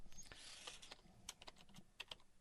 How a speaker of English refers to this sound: I heard you typing. You were already putting the time code down.